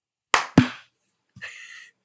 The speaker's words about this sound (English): And we do that by having a 3-2-1 countdown and a clap. So it's going to be 3-2-1 and then a clap. Okay. And we're going to do it 2 times.